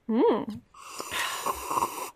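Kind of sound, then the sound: food or drink, slurping a drink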